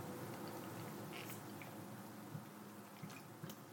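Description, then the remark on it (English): Someone quietly sips water, with a few soft wet gulps and small clicks spread across a few seconds over a steady low hiss. No one speaks. “And so I'm just going to take a quick drink of water.”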